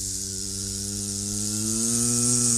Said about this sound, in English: imagine suddenly the sky becomes black and you can hear the buzzing of all the locusts.